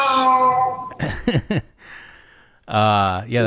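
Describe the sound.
A very old cat, 23 years old, lets out two loud, drawn-out meows, the first sliding downward, the second wavering, with a short burst of talking and quiet room noise between them.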